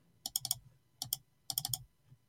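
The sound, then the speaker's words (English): Rapid computer clicking in three quick bursts of sharp clicks separated by brief pauses; no one speaks. “all you can hear is just the frantic clicking of a frustrated teacher's talk radio host”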